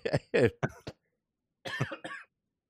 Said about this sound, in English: Don't make me laugh because I'm coughing to death over here.